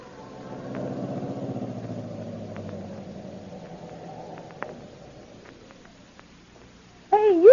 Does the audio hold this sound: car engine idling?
yes